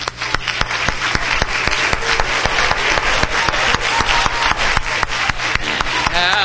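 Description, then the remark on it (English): An audience claps hands together to the Lord in a steady, unified rhythm, each sharp clap landing about three times a second over a constant wash of crowd noise; a voice rises briefly near the end. “Oh, let's clap our hands to the Lord tonight.”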